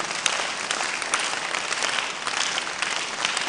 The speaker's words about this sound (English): At least one Christian is clapping for Jesus.